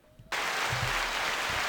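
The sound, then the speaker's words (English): After a brief hush, a small group breaks into a sustained cheer with clapping, a steady wash of voices and applause that holds for over a second. “Let's, let's give her a cheer.”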